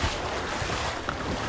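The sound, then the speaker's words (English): A watery splash that spreads into a steady, rushing wash of churning water, fairly loud, with a windy hiss over it and no voices. “And then splash.”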